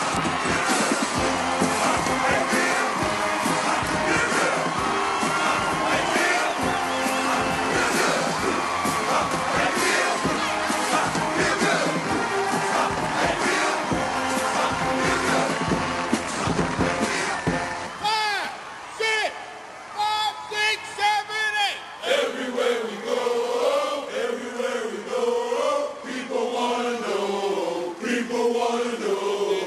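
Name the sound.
stadium crowd cheering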